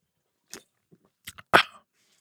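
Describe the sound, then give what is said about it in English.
Wet mouth sounds of someone sipping beer: a quick slurp, a couple of soft clicks, then a louder, drawn-out sip that fades off. No one speaks. “I'm taking another one because I already forgot what it was.”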